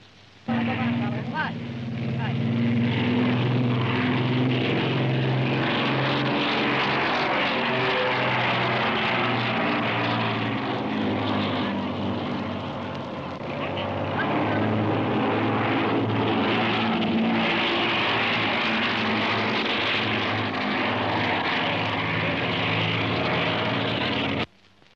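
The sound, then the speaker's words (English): The racing motorboat Miss America 10, with a 6,400-horsepower power plant, roars steadily across the water after being christened, with a deep, droning hum and rough high-frequency buzz, briefly easing in volume midway before surging again, with speech faintly mixed in. “And so that is the sound of Miss America 10 being christened and Miss America 10 running across the water.”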